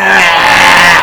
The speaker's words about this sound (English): Burping and burping.